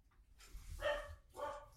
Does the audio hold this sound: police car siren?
no